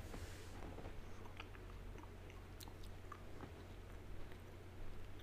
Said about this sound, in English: Okay. I apologize if you can hear me chewing. Okay. Not bad.